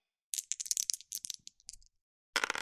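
Dice rattle and clatter in a quick run of sharp, bright clicks for over a second, then after a short pause another brief burst of rattling, as a child in a school classroom rolls dice to play a counting board game, landing a 3 and a 6.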